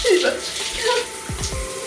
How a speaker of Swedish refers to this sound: Jag duschade huvudet och det var inte enkelt.